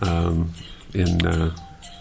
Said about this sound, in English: Is that somebody's phone?